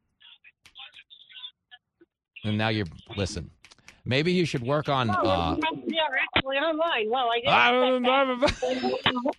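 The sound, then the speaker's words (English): A caller's thin, tinny voice cuts in and out in choppy fragments with gaps of silence as the phone line breaks up, then a fuller, clearer voice talks over the line. “I'm trying to be nice, but your phone's breaking up.”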